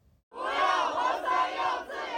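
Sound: protest crowd chanting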